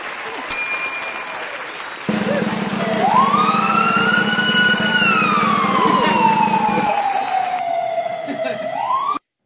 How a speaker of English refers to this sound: Sirens on the Pants Cast.